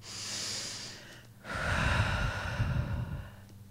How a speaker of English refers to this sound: I'm gonna take your hands. I'm gonna put them kind of like on my key center. I'm gonna do some deep breathing with you. I'm gonna try to get your eyes. You're gonna breathe with me.